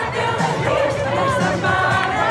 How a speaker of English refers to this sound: people were out in the streets, celebrating, honking, popping champagne. Crowds of people were singing and dancing.